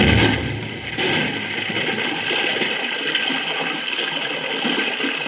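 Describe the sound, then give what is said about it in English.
A steady, loud roar of flood water pours and churns through a gap without pause, with no voices over it. “Madre mia, look at the water pour through that gap.”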